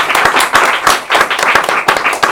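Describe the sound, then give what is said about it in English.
Steady applause from a live audience of family members and friends of the poets at a poetry event, dense overlapping hand claps forming a continuous bright patter with sharper individual claps poking through, fairly loud throughout with no voices. “I didn't mention earlier that we have a live audience with many of the family members and friends of the poets, and they're going to be applauding as we move.”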